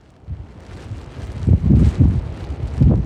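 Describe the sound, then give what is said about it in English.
Gusty wind blows steadily outdoors on Fossil Beach near Kodiak, at the southern end of the island's road system, in wet, windy weather, buffeting the microphone with low, rumbling surges that grow stronger and come in waves partway through. No one speaks. “This weekend's drive from Kodiak out to Fossil Beach at the southern end of the island's road system was wet and windy.”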